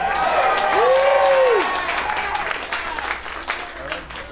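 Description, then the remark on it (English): A crowd applauds steadily with scattered cheers and whoops rising over the clapping, loud and sustained, then gradually thinning out toward the end. “I don't know if this one's worth cheering over, but I certainly agree.”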